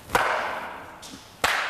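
Two sharp, loud hand claps, more than a second apart, each a crisp snap, with a steady hiss filling the gap between them and no voices.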